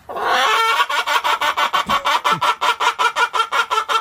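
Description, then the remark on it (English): A chicken being told a joke clucks in a rapid, steady run of loud pulses, about four per second, with a cackling quality that almost sounds like laughter; no one speaks. “Chicken, he's laughing.”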